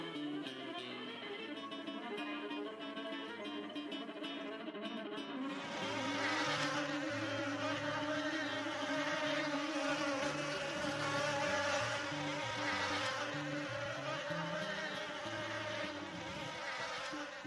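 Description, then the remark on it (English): Fast, swirling orchestral music, the intro to The Flight of the Bumblebee, mimics a buzzing bee with rapid chromatic runs, growing fuller and louder as low strings and bass join partway through. No one speaks. “You hear that bee buzzing?”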